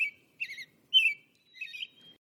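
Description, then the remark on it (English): An American robin calls in four quick, bright phrases with short gaps between them, clear, with no other sounds around it. “That is so familiar. I hear that outside my window every morning right now.”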